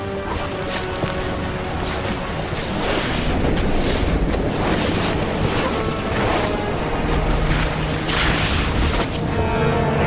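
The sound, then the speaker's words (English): Loud, continuous rushing of fast river water, a dense steady roar with churning splashes and gusty surges, with no voices throughout. “The river runs fast, so fast that both friends struggle to stay together.”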